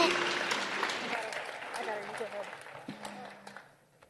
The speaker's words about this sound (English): Can y'all give her a round of applause? Yay! Yay.